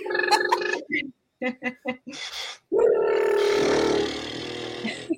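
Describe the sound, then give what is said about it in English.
A voice makes short vocal bursts, then blows a long, buzzy, fluttering lip trill, like a horse's whinnying snort, held for about two seconds at steady loudness, as a vocal exercise that engages the diaphragm. “And you might sounds like a horse.”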